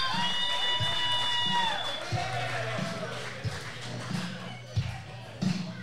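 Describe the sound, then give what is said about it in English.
A wrestling crowd in Sarasota, Florida, in February 2021 cheers in a loud, steady roar after Shannon Moore wins the match, with a sustained tone at the start that slides down and fades, and dull thumps punctuating the noise. “Shannon Moore picks it up for the victory, and the crowd is hype.”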